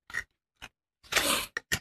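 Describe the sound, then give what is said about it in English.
Paper cards being shuffled: a few short papery scrapes, then one longer rustling sweep and two quick flicks, with no voices. “I shuffled them in there.”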